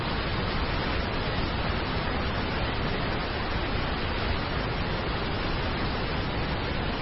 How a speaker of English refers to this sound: In just a moment, I want you to listen to the sound of Niagara Falls. We're going to play this for you.